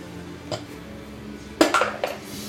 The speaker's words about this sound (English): I have to do it again because it ran into my other dice and I don't know what I rolled.